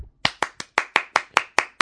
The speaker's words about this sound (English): You don't have to clap for yourself, man. Just have a seat over there. Oh, well, no one else was clapping, so... I was clapping, actually.